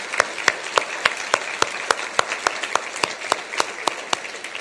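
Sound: audience applause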